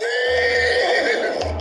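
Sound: horse neighing sound effect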